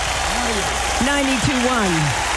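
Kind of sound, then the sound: crowd, applause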